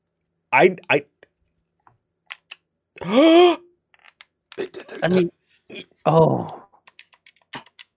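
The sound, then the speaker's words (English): Scattered, irregular clicks of a computer keyboard tapping away, interrupted by several loud vocal outbursts and groans that sound partly like speech. “You hit a freaking keyboard to write your damn review.”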